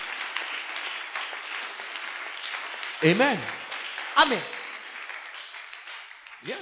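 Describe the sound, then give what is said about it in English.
An audience claps in a steady, dense wash of applause, while raised voices call out briefly over it several times before the clapping thins toward the end. “Your clapping is filled with pride.”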